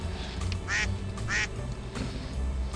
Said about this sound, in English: That's the allergy duck.